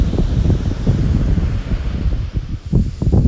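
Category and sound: nature, ocean waves and wind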